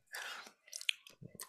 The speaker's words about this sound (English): Are you eating something right now? No, I'm not. Because it sounds like you're chewing. I ate an almond a little while ago. Yeah. I may have some stuck in my teeth.